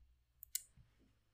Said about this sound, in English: Yeah, I sorry, I was typing.